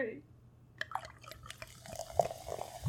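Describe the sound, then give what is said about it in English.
Mimosa poured into a glass near a microphone, a run of small splashes, fizzy crackles and drips building over a couple of seconds, with a faint low hum underneath. “Well, how about we do a nice pour near the mic?”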